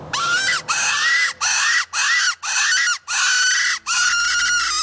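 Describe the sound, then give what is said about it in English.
A loud, harsh prey distress call repeats in seven raspy, squealing bursts, each a strained cry broken by brief gaps, used for calling coyotes. No one speaks. “But, you know, most hunters, I think, rely on that prey and distress sound.”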